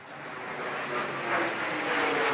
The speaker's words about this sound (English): This loud noise of a plane coming overhead. And then I watched this plane flying at a low altitude race past us.